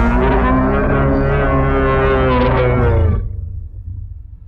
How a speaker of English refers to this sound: As the footsteps begin to increase pace, trees get knocked over and pushed apart as this hulking, bipedal wolf creature explodes out onto the path before you and lets out this bellowing roar.